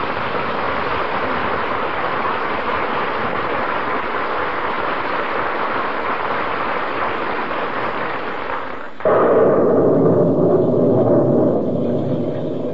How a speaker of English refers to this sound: Your feet wet, kiddo? Well, as Bob Hope would say, I wouldn't say my feet are wet. But the USS Pennsylvania just sailed under my left instep. You shouldn't ought to stand out in the rain like this.